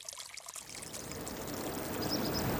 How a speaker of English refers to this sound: You're listening to the sound of water flowing through an irrigation canal in central Oregon. It's a pretty ordinary canal, to be honest.